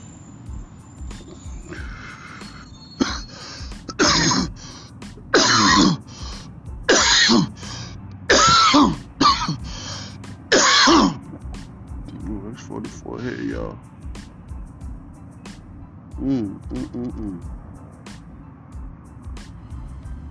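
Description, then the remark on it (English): A hard, rapid coughing fit: about eight loud, harsh coughs in quick succession, then a few weaker, raspy hacks trailing off into quiet breathing. “You ever cough so hard, I feel like everything is just at a standstill, like you just can't move, and then everything slowly comes back to life.”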